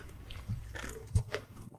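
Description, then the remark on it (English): A quiet sip of coffee from a cup, with soft mouth and swallowing noises and a brief low knock partway through; no one speaks. “Hang on, I'm going to have a sip of my coffee.”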